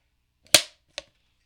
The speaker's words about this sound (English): Clap sync for camera B.